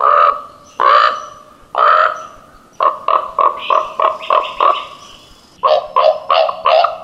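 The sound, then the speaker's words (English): A raven calls loudly along a shoreline, announcing a dead salmon it has found: three drawn-out croaks, then a quick string of short, hollow knocking calls, and a final burst of several more, with no talking. “Listen for the loud croak and hollow cowp cowp of the raven.”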